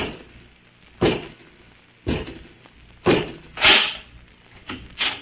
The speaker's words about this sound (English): open the door.